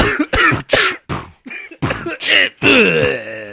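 A loud run of about seven rough coughs and throat-clearing bursts in quick succession, ending in a longer strained, throaty rasp. No words are spoken.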